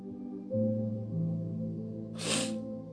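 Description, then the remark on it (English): A single short, breathy sniff near the end, fairly loud, rising over a steady backdrop of sustained keyboard or organ tones. “Excuse me for sniffing.”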